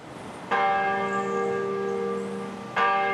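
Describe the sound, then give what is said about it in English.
A large church bell at Christ Church Cathedral in downtown Vancouver, British Columbia, tolls twice in honor of the Queen, part of 96 tolls, one for every year of her life, struck every minute on the minute; each deep, ringing strike is followed by a long shimmering decay that carries into the next, heard clearly with no voices. “As the bells tolled at Christ Church Cathedral in downtown Vancouver Thursday, 96 times in honor of the Queen, many were only just learning of her death.”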